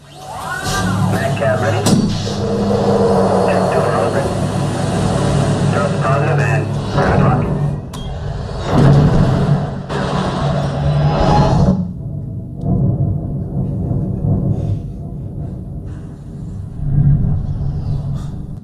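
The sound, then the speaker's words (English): A loud, deep mechanical rumble and steady engine hum with rising, whooshing tones, a spaceship sound effect of a ship leaving a docking bay, continuing for several seconds before thinning into a quieter, sparser drone. “They were leaving a docking bay.”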